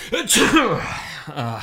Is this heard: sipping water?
no